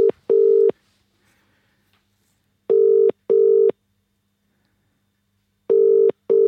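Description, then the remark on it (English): A phone ringback tone from calling a friend sounds three times as clear double pulses, each pair of short buzzy tones followed by a few seconds of silence, alone with no talking. “So let's just give him a ring, see what he's doing.”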